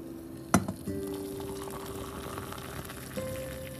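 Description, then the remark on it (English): In the morning, hot water pours steadily into a favorite cup from Riodoso XOXO after a sharp clink, a soft hissing stream with a faint tone that slowly rises in pitch as the cup fills. No one speaks. “Every morning we are going to start this podcast with the magic, and it begins with brewing my hot, warm water. And pouring it into my favorite cup that I got from Riodoso XOXO.”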